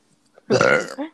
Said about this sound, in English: Hold on, I have to burp, but it's stuck in my chest.